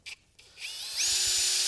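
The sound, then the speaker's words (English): A power drill driving screws: two quick trigger blips, then the motor spins up into a steady, loud high-pitched whine that holds to the end. No voices. “I got 3 more screws.”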